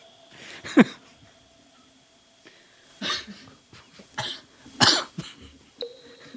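A harsh coughing fit from something caught in the throat in dusty air: about five rough, hacking coughs at uneven intervals, with a throaty rasp between them and no talking.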